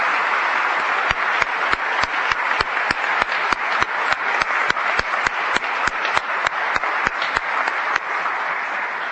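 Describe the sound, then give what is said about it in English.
An audience applauds steadily for several seconds for the students of an MLK contest and their parents, teachers and mentors, a dense wash of clapping punctuated by sharp, evenly spaced claps at about three per second, like a rhythmic beat. No one speaks. “Now, let's have one more round of applause for all of our students and their parents, teachers, and mentors.”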